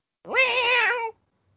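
A single drawn-out cat meow, fairly loud, rising at the start and holding steady for nearly a second before cutting off into silence.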